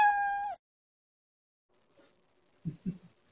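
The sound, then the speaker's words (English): A single drawn-out, steady, loud meow, clearly a man's voice imitating a cat, followed by silence and a couple of soft, low thumps. “Meow. Did he say meow?”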